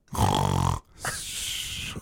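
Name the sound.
person imitating snoring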